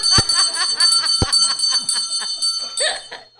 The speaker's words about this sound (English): We'll ring the bell. And now we'll watch him again, because here he goes again. He's going to ring it twice. This is the way the nuns used to call us for class.